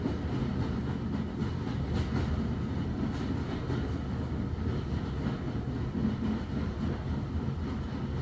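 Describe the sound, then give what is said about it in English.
A train rumbles steadily with a deep, continuous chugging and whooshing, faint rhythmic puffs running through the low roar as it gets underway, pulling away from a station platform. No one speaks. “You step aboard and the train begins to huff, chuff, and whoosh.”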